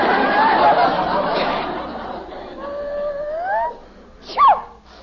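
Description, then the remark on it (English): A dog inside a house lets out drawn-out, rising whines and a short howl, ending in a sharp high-pitched yelp, following a stretch of muffled, noisy chatter in the background. “Where is it? Where's what? The dog.”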